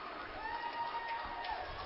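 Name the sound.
football stadium crowd cheering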